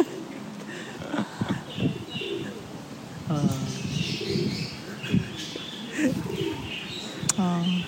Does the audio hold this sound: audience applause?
no